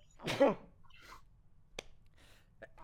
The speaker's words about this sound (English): Bless you. Again. Thank you.